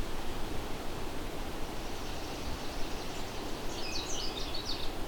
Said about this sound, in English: Here's a fairly common warbler known as the American Redstart.